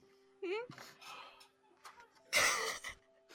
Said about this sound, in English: Bless you